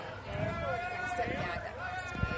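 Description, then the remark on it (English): Indistinct crowd chatter picked up by a microphone: several overlapping voices murmur steadily at a moderate level throughout, with no single speaker standing out and a brief low thump near the end. “It's picking up crowd noise.”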